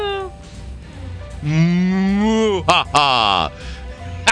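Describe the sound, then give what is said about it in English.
A person imitates a cow with a long, drawn-out moo that rises and falls in pitch, followed by a short second moo, loud, with faint background noise. “Vampire cow.”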